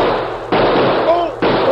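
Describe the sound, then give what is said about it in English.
Loud gunshots crack out in quick succession, each sharp blast leaving a harsh, hissing wash of noise that carries straight into the next shot. “Here, let me see where that bullet nicked you.”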